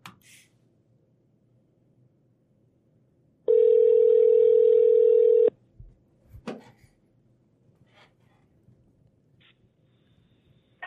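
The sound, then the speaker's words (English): A loud, steady telephone tone holds for about two seconds in otherwise quiet surroundings, then cuts off, followed by a few soft clicks and faint handling noises as a call is placed to a guest. No one speaks. “I got to give him a call, man.”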